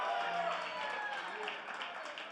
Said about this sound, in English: Well, let's give Jesus a great big hand clap. Amen.